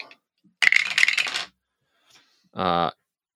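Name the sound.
handful of dice rolling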